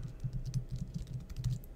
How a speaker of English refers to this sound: Going to do the drawing here. I'm typing it in.